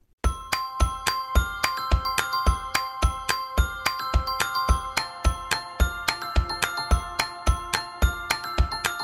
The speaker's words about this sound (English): Sounds like wedding bells, doesn't it?